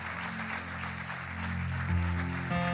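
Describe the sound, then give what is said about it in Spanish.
Steady crowd applause welcoming a singer at a weekend celebration fills the whole stretch, a dense wash of clapping over sustained low musical chords that swell and shift toward the end, with no talking. “Vamos a recibir con un fuerte aplauso a ….”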